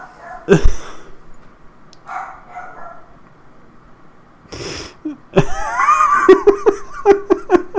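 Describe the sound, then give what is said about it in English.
A female dog barks in a few sharp bursts, then a rapid run of barks toward the end, loud, with some laughter mixed in. “Also, there's a dog barking.”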